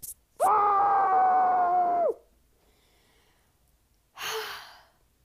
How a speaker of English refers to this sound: I want you to take the pillow. I want you to smush it on your face, and we're going to yell into it. Ready? Okay. Three, two, one.